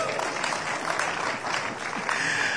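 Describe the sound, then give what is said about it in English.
A crowd of people applauding, a steady dense wash of clapping that stays loud and even throughout, with a faint murmur of voices mixed in. “Let's clap for all of them.”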